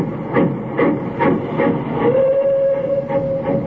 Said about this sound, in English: I stood there watching the red light of his train disappear.